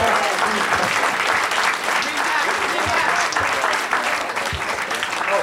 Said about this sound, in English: I hear your applause for both sides, the winners and the losers.